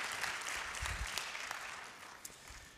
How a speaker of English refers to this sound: Let's just go ahead and give a round of applause for our new members.